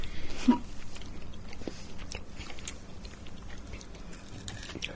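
Crunch of someone biting into a crunchy White Christmas slice, hard on the outside and soft inside, followed by several seconds of steady, moist chewing with small crackles, no talking.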